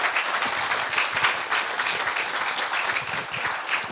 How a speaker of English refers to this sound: So let's give a big round of applause to our guest. Thank you. Thank you.